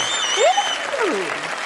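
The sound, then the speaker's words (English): Audience applause at a live recorded show, a dense steady wash of clapping for the whole moment, with a few high whooping cheers rising and sliding down over it. “I am feeling that applause today.”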